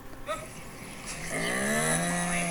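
A hyena at Out of Africa in Arizona, having come up to a picnic table, lets out a low, drawn-out growling call that swells halfway through and holds steady, fairly loud, with a moaning, cow-like tone and no one talking.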